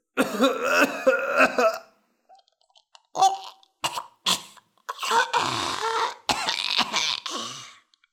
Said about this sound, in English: Ugh! He cried. His eyes watered, his nose ran, and he coughed helplessly.